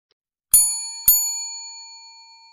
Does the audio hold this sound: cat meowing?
no